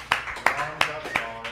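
Applause in a slow, steady rhythm: about five sharp, evenly spaced hand claps, moderately loud, with no voices over them.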